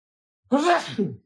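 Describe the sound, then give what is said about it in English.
A single loud sneeze with a voiced two-part burst, a sharp rising onset followed by a shorter tail, after a moment of silence. “Bless you.”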